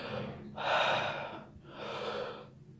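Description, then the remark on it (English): Two deep, drawn-out breaths of a breathing exercise, each about a second long, with a short pause between them. The airy rush is fairly loud, and no one speaks. “See, I'm still doing the breathing.”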